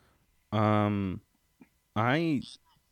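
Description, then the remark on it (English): Two loud, drawn-out dog barks from a beagle and a small Yorkie mix, the second rising and falling in pitch, separated by a brief quiet pause. “Well, those are my dogs.”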